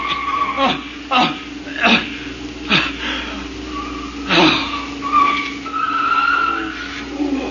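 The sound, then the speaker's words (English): A car skids hard with tires squealing in a string of short, loud screeches, ending in a longer drawn-out squeal, with an engine rumbling underneath. “Stop this car. Let me out.”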